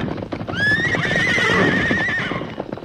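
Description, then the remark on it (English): Mustang horses, led by the horse Silver out through a corral gate, run off; one lets out a long, loud, quavering whinny lasting a couple of seconds, over a steady drumming of galloping hooves. “Yippee, look at them travel. You'll never catch them horses again”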